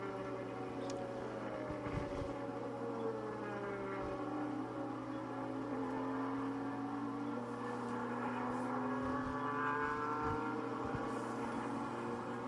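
Race car engines roar steadily and accelerate on a racetrack through the Riverside area, their pitch sweeping up and down as cars pass. The droning noise is loud and continuous, with no voices.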